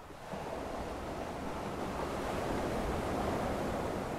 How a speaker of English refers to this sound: Waves crash upon the shore once known as Nuku Beach.